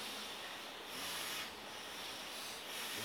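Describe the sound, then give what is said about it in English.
A long, steady hissing in-breath drawn through the left nostril, with the right nostril closed, during a breathing exercise: a soft, airy rush of noise that runs unbroken for about three seconds, swelling and easing slightly, with no voices. “Long in the hissing breath, please.”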